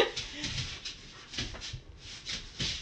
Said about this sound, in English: And we have a dog playing tug.